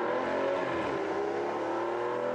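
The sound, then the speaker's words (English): An Aston Martin DB11 course car on a racetrack revs and accelerates: a powerful sports car engine with a steady loud roar and rising harmonic tones for a couple of seconds, with no voices. “It's not an LMP3 car, by the way, getting the jump on everybody else. That is a glorious Aston Martin DB11.”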